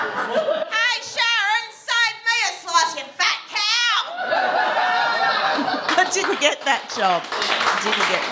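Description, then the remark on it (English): An audience bursts into lively laughter, with whoops and cackles, then breaks into steady, full-room applause that continues loudly to the end, mixed with scattered cheers and more laughing. “Thank you so much for applauding for Fat Cow.”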